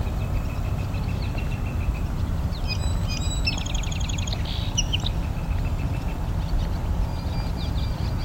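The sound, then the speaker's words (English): A barn swallow sings a rapid twittering, buzzy phrase of chirps and trills lasting a few seconds, above a quarry near a highway, over a constant low roar of traffic. “There's the barn swallow singing.”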